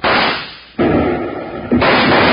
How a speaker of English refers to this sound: Suddenly, Basher and his gun slicks appeared from the door of the Red Gopher Dance Hall and opened fire on Bill and Jingles.